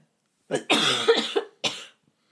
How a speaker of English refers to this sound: Excuse me, not supposed to cough, COVID-19. You can cough.